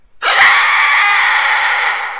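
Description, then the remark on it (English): A loud, sustained scream from an unknown creature right behind a tent on a dark night erupts suddenly and holds steady for about two seconds, shrill and piercing, with a harsh, strained tone and no talking. “I got all set to jump out when this thing, whatever it was, started screaming.”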